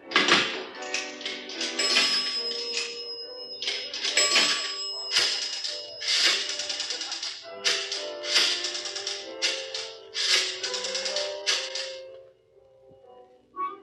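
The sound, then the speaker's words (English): Two nickels drop into a pay phone with a series of ringing chime-like tones, followed by the clicking of a dial as a call is placed, heard for several seconds before fading to quiet. “I'll call her and find out.”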